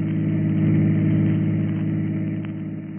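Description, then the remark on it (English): A chauffeur-driven car's engine runs steadily, a loud, even low hum with a faint mid-range whine, holding constant throughout with no voices. “We find him now in his chauffeur-driven car, and with him is the lovely young girl, 15 years his junior.”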